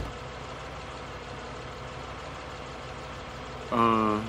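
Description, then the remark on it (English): A steady low car engine rumble idles for several seconds as a ride arrives, then a brief louder burst of harmonic sound, like a voice or horn, cuts in near the end. “Is this an Uber? Did I get into the right car?”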